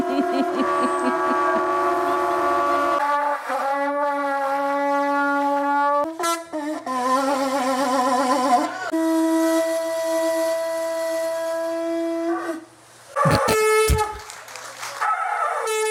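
A conch shell blown in Key West by buzzing the lips to play a tune, in long, loud, brassy notes that shift between a few pitches, buzzing and horn-like, with a brief break before a final wavering blast.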